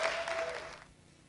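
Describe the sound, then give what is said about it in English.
A crowd applauds to welcome a speaker from Southover Church in Lewes, with dense, steady clapping for about a second before it fades away quickly. The clapping is moderately loud, and nobody speaks over it. “Yeah, my own church never clap when I come. So thank you so much.”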